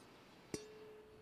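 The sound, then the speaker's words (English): A single light tap on a wine glass during a wine tasting produces a clear, bright ding that rings on as a steady tone, fading slowly into quiet background hiss. “What was the banging on the glass for? Mostly just because I like the noise. It makes a cool ding.”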